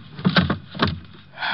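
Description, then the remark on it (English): A heavy gun clunks into a wooden drawer with a few knocks and rattles, followed by a short scraping slide as the drawer is pushed shut. No one speaks. “Drop the gun in the drawer.”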